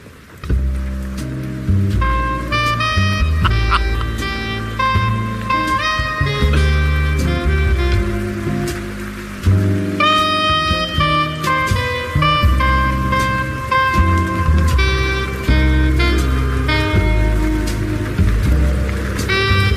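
Slow, moody film noir detective-style jazz with sustained melodic notes over low bass plays continuously, layered with a steady wash of rainfall that gives a rainy city night atmosphere. No one speaks.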